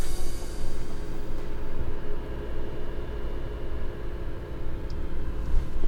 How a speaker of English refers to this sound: This thing is whisper quiet, and it just sounds almost like a small like laptop kind of running in the background when the fans are spinning. It really doesn't make much more noise than what you're hearing here.